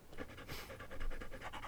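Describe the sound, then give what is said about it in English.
A female dog pants rapidly and steadily, quick rhythmic breaths repeating throughout with no voices present. “That's why I have a dog.”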